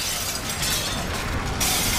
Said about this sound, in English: Every store window is being smashed, and the people are shouting to free Peggy.